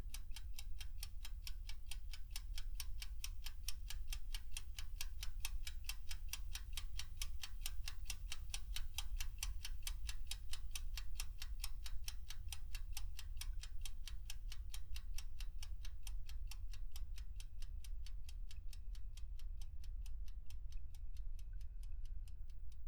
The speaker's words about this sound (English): When the second hand ticked its final course to that momentous hour, life inside Carlsbad Cavern continued without fanfare.